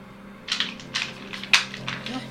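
A twenty-sided die clatters across a tabletop as it is rolled to make a search roll, a string of sharp, uneven plastic clicks over about two seconds, with a faint low hum underneath.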